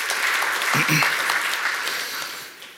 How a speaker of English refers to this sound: Amen. You can clap for that. You can clap for yourself.